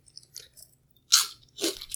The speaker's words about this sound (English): that was a big crunch.